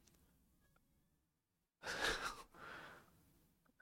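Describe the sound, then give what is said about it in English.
A dog, Nala, breathing hard: two loud, raspy huffs of breath follow a brief silence, with no talking over them. “You heard how hard she was breathing?”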